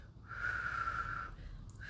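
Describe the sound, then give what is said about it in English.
A breathy, airy whistle attempt: one sustained rush of breath carrying a thin, wavering mid-pitched tone that never quite becomes a clear note, fading out after about a second. “You sound like my window.”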